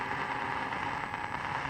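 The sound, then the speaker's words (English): A hissy, crackling AM radio signal, radio frequency interference from a gasoline engine picked up by the radio, drifts slightly up and down in pitch over a steady, fairly quiet wash of static with a thin high whine, somewhat like a car engine. “In fact, I noticed that the audio, sometimes it would go higher up in pitch, and sometimes it would go lower in pitch.”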